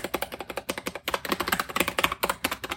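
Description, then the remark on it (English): Rapid, forceful typing on a mechanical keyboard with an aluminum case, a dense run of sharp, clacky keystrokes in quick irregular rhythm, fairly loud with no voices. “It's a nice feel to type on this board.”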